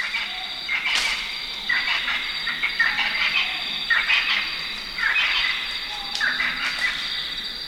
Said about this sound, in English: We take you now to a 300-foot-high cliff deep in a forest in Zimbabwe, not too far across the border from Mozambique. It's dawn, and baboons are joined by many different birds, amphibians, and insects to create this wilderness opera.